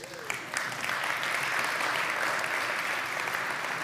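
An audience applauds steadily, a dense wash of many hands clapping at an even level for several seconds without pause.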